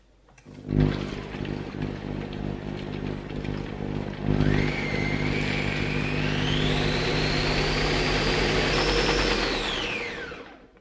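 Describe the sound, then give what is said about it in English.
A blender whips a thick tahini mixture until pale and fluffy, working air into it: the motor kicks on with a low, rough hum, then revs up into a loud, steady whirring whine before winding down at the end. No one speaks. “And this process really like whips up your tahini and makes it pale, and it really incorporates quite a bit of air into it, so it's nice and fluffy.”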